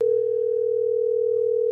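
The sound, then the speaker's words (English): A phone line gives a steady, unbroken mid-pitched tone as an April Fool's prank call from The Todd Glass Show fails to go through. It holds at an even, fairly loud level for just under two seconds, with no voices. “They're going to make a prank call on a morning show, but they can't get through, so this is what the audience has to hear.”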